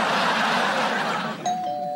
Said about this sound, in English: Coco rings the doorbell.